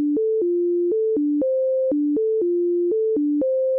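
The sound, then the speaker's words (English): A simple set of pure electronic tones, recreated by Deutsch for a listening experiment and sent to the left ear, steps back and forth between lower and higher pitches in a repeating pattern, clean and steady at even volume, with no voices. “To do this, Deutsch recreated a simple set of tones alternating between low and high and sent it to the left ear.”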